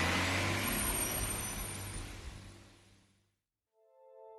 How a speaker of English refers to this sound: And I heard the truck driving away.